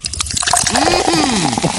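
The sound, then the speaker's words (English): A 40-ounce beer bottle being opened, a short burst of steady fizzing hiss with liquid sloshing and gurgling through it, fairly loud and lasting under two seconds. “I recorded the me opening it. Here it sounds.”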